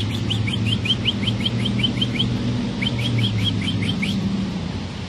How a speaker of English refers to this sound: The little bird. The little bird.